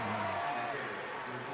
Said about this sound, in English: Smattering of applause in the arena for the former Spur.